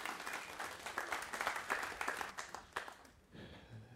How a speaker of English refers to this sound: All right, let's give them a round of applause, would you please?